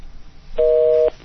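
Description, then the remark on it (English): A single steady telephone dialing tone sounds for about half a second, loud and clean, over a faint background hiss with no voices. “I hope I'm not missing out some numbers. Hopefully it will work.”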